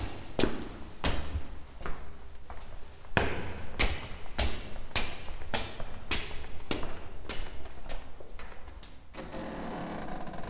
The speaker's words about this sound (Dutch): de ingang van de flat heeft opgeleverd heb gepasseerd, loop ik voor de zoveelste keer alle 12 trappen omhoog.